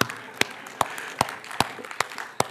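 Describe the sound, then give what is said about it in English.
An audience at a church service claps for a Bible reading from 1 Peter in a slow, steady rhythm, about seven sharp claps evenly spaced, each crisp and distinct over a faint, noisy background hum. “Absolutely good to clap for a Bible reading”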